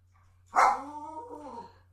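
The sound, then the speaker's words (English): A dog named Henry lets out one sharp, loud bark that trails off into a drawn-out, whiny yowl lasting about a second, as Jude Law walks away on screen. No one speaks. “Exactly, he walks away and Henry starts barking.”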